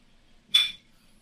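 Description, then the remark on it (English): Glasses clink together once in a toast, a single bright, high-pitched chime that rings briefly and fades within a quarter second against near silence. “Let's raise our glass, boys.”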